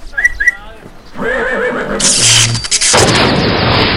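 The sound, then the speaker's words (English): A unicorn whinnies, then a rising electric crackle bursts into a loud, sizzling lightning blast shot from its horn and a sustained explosive roar as it strikes a barrel. “They shoot lightning bolts?”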